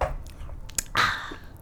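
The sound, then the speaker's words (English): A loud, wet slurping sip of Old Rasputin beer, a quick airy suck followed by a longer noisy draw of liquid, with no one talking. “No, I just don't understand why you have to sip your beer like this.”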